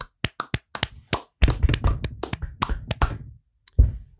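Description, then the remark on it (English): Hands clap to mark the end of a bracket, in sharp, irregular bursts: a few scattered claps, then a denser flurry of overlapping claps, a brief pause, and a final loud clap at the end. No talking. “And as we do at the end of every single bracket, we are going to clap it out.”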